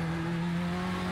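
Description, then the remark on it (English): A GT3 race car engine revs with a loud, steady high-pitched drone and a strong buzzing tone, continuous for about a second, with no one talking over it. “I'd love to see this car in GT3s”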